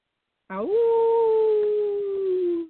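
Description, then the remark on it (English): A single sustained howl voiced by a person imitating a wolf, rising quickly then holding a long, slightly falling tone for about two seconds, loud. “Oh, that's pretty good. Right. Pretty good. I would give that a 6.5. It's not my seven. Best howl.”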